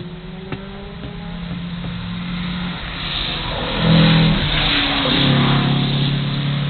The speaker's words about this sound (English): Old Volksy coming up here, but very, very strong car.